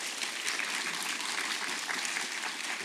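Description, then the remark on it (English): A church audience at True North Church applauds a guest speaker as she enters, a dense wash of many hands clapping at an even loudness for the whole stretch, with no voices rising above it. “So let's give her a round of applause as she enters.”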